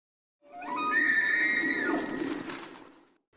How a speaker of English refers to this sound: Let's talk a little bit about the elk rut. I am going to play you guys a sound.